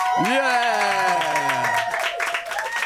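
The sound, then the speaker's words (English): A small group of control room staff cheers and whoops loudly, with voices rising and falling over a steady patter of clapping, sustained for a few seconds. “That might be the best control room cheer we've had.”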